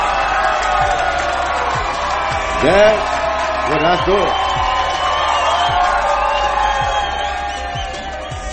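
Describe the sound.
A crowd cheers and whoops loudly and steadily throughout in response to a call to cheer, with a few rising shouts standing out midway, while a man briefly speaks over the noise.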